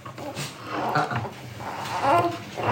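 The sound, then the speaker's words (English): A dog whimpers and whines, with strained, wavering vocal sounds rising and falling over a few seconds, a low growly edge creeping in now and then. “Who wants to go to dog prison?”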